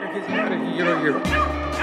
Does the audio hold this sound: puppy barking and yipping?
yes